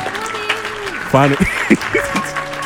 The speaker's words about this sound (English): Let's clap it up for my guy.